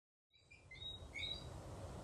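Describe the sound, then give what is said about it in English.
A whistling frog calls in Barbados on a slightly rainy day, with short, high, piping whistles, repeated irregularly and sometimes overlapping, over a steady low rumbling hiss of background noise. No one speaks. “That is actually a whistling frog.”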